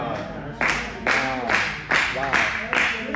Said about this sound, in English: Wow. You know, all these folk in here, I should have got more of a participation of hand clapping than that. But it's okay.